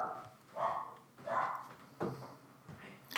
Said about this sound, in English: I am going to go stop my dog from barking now. Would you hold on 1 second? Yeah, your dog's barking.